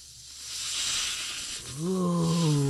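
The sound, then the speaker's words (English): A person imitates a snake with their mouth as a live sound effect: a long, steady hiss lasting a couple of seconds, moderately loud, then sliding into a drawn-out voiced tone. “You really nailed that snake sound”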